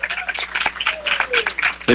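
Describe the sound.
An audience breaks into sustained applause, a dense wash of clapping that stays fairly loud throughout, with crowd voices and a brief whistle mixed in.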